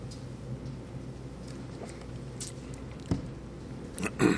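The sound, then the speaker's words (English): Someone takes a quick sip of water to help their voice, with a few soft mouth clicks and a wet gulp near the end against quiet background noise. No one speaks. “And we'll see if this drink of water provides a little help for my voice.”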